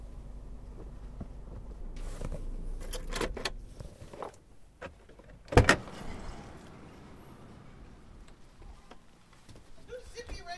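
Someone gets out of a car parked at the curb in front of a house in Stockton: rustling and clicks, a jingle of keys, then a single sharp car-door thud midway, followed by quieter ambience and faint shuffling.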